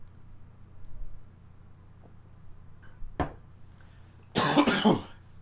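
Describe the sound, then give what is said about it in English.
A person coughs twice, a short sharp cough followed a second later by a louder, harsher one, over a quiet low room hum with no talking. “And we cough.”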